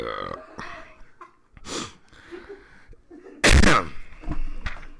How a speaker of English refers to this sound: Look how big the zigzags are for the burp compared to, you know, everything else.